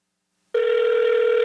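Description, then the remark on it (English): After a moment of silence, a steady electronic ringing tone of a call placed from a cell phone switches on and holds at an even pitch and volume, like a call ringing through on the line. No one speaks. “You know, I'm just going to try it on my phone here.”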